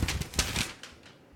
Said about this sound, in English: Don't shake that paper. We're not going to do that.